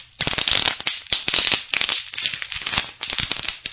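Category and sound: sound effect, fireworks sound effect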